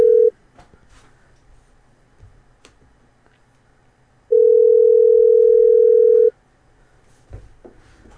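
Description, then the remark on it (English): A steady electronic telephone tone sounds briefly, then returns as a long, loud two-second tone, with soft clicks and faint line noise between, and no one speaking, as a call comes in. “Okay, we got another call coming in here or going out.”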